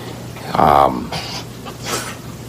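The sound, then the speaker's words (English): A dog sneezes: one strong snorting burst followed by two softer, quicker sneezes spaced about a second apart, over a faint steady hum. “He just threw me off with that sneezing.”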